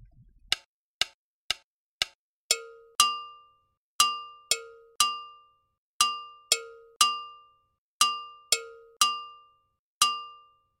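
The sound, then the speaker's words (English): A gankogui double bell plays a repeating rhythmic pattern alone, bright, its sharp metallic strikes alternating between a lower and a higher ringing tone after a few quick, dry taps; this is the gankogui part that complements the timeline bell pattern. “The next part is the gonkogui, which complements the timeline.”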